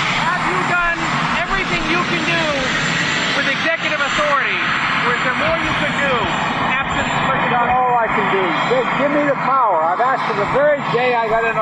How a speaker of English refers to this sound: He was asked today on his way to Marine One, the president, you'll hear the helicopter in the background there